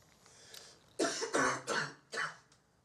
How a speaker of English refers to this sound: I swallowed a bug the other day. You ever do that? I keep coughing like it's still in my throat.